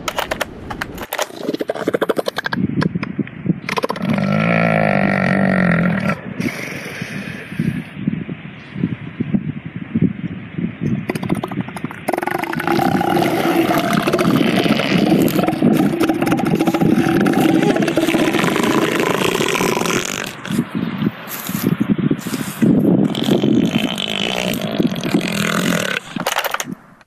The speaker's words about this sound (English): Here's one of Stella's own recordings of elephant seals that she sent in to me at Off Track.